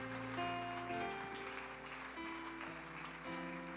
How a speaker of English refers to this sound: Clap your hands to the Lord and let's praise him together.